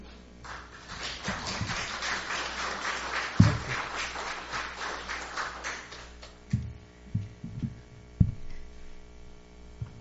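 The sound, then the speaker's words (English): An audience breaks into spontaneous, steady, dense applause at the end of a Sunday service lecture that carries on for about six seconds before dying away, leaving a few scattered low thumps and a faint hum. “This spontaneous applause shows how wonderful the lecture was.”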